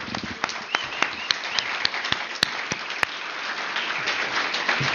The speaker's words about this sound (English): And here we are, our final award of the evening. Let's first get a big round of applause for everybody.